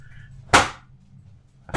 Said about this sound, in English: Our dog is just slamming a piece of cardboard on the...